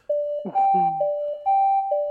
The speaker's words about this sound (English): Uh-oh, that's the sound. If you know what that alarm means. What's that alarm going off?